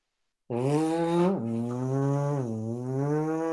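A single long, buzzy snore, close and fairly loud, starting abruptly and droning steadily for about three seconds with a slight dip in pitch partway through.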